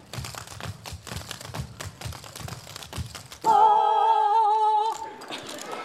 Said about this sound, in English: We do a little bit of tap. We also do a little bit of Irish step or river dance.